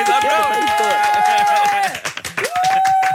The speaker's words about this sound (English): Woo! Yay! So, applaud, come on!